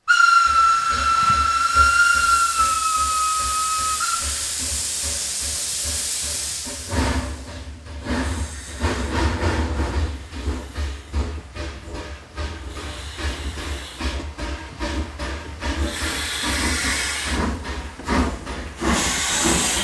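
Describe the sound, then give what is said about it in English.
A loud steam train whistle blows a sustained tone for several seconds, then gives way to heavy rushing steam hiss and rhythmic chuffing rumble of the moving locomotive, on a train heading to Chicago, Illinois. “We are going to catch the train.”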